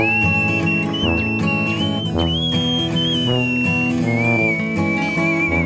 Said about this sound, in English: Come on, …, you know how to whistle.